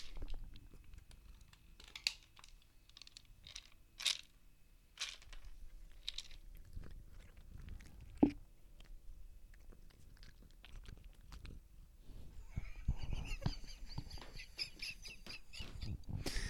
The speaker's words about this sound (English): There's something so incredibly funny to me about cats eating. It's just... the cats are little freaks. They're little creepy weirdos.